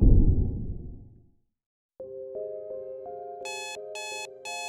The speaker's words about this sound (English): Your alarm clock sirens. You hit the snooze button and catch the last few precious minutes of slumber before your waking life becomes unavoidable. It blares again and again.